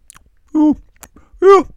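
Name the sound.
chewing candy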